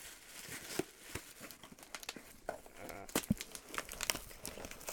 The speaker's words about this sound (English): Pulling the paper out.